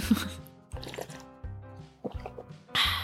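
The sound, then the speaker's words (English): Someone takes sips of water from a water bottle, with a series of short wet slurps and gulps coming in quick bursts, fairly quiet overall. “Everyone, if you heard that then, that was my excellent water bottle.”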